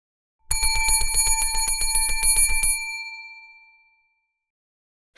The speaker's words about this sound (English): The bell was still ringing.